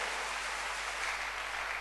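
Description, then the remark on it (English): A church audience claps hands for the Lord in a dense, steady burst of applause that stays at an even level throughout, with many overlapping claps blending into a continuous crackle and no voices. “Oh, clap your hands for the Lord.”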